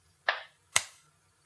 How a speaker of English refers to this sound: record, okay, record and everyone clap.